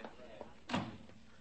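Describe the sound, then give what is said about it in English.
A car door is handled: a couple of light clicks, then one dull, solid thud as it shuts, over a faint background hum. “Open a back door for them, officer.”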